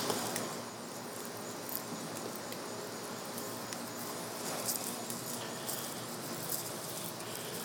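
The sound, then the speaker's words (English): Burning charcoal crackles and hisses steadily in a grill as it gives off smoke, a dense, fairly quiet texture of tiny pops and sizzles with a few sharper snaps scattered throughout. No one speaks. “Yep, you can hear that charcoal really going now.”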